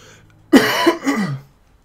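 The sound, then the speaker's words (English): A person coughs in a quick burst of two or three harsh, throaty hacks lasting about a second, with quiet before and after and no talking. “I'm coughing.”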